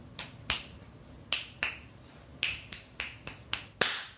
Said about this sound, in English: That was a bunch of snapping and clapping. Do you think that read? Yeah, absolutely.